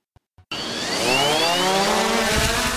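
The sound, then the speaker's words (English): Two soft clicks, then a small drone with a tiny camera attached kicks in with a loud, steady buzz, its high whining tones climbing in pitch as the motors spin up for takeoff at the Palisades in Fort Lee, New Jersey. No one speaks. “This little drone, tiny camera attached, lifts off effortlessly, buzzing around the Palisades in Fort Lee.”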